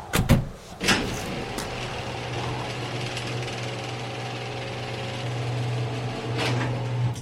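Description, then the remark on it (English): A garage door opener hums steadily as the door of an attached home garage rolls closed after its button is pressed, with a couple of clunks as it starts and a rattle near the end, with no talking. “Exiting the vehicle, I headed for the door that led to my kitchen, pausing to hit the button that would close the garage door and pulled my boots off.”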